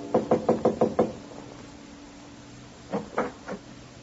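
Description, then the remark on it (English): Six quick, evenly spaced knocks on a panel door of a seventh-floor apartment off a carpeted hallway on Madison Avenue, a short pause, then three slower raps. The knocking is fairly loud, with no voices. “Rap on the panel door.”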